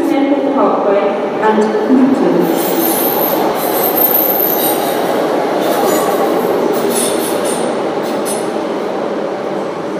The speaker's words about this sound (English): So not only am I trying to figure out what I'm going to say, but I'm also talking over the top of a train arriving in the station, which is a very difficult thing to do, but I'm going to power on anyway.